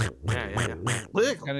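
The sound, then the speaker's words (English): A person imitates a duck with a series of about five nasal, buzzy quacks in quick succession, loud, with no other talking. “After you're done making the duck sound, Daffy's here.”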